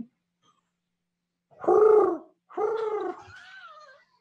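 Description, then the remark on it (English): A person imitates an animal call with two loud, throaty hoots, each about half a second long, the second trailing into a thinner, wavering whistle-like tail. “So you make your hooting sound.”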